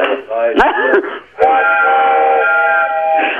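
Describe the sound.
Several voices hum and sing together in a sustained, wavering chord, mimicking the long blare of a train horn, broken briefly by a couple of sharp clicks before the held tone resumes.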